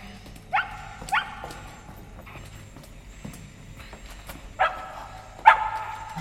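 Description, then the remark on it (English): A dog barks about five times in short, irregular bursts while fetching something out, two quick ones early and two sharper ones near the end, over a low rumbling background with no talking. “Oh, you've got it. I knew it. Good dog.”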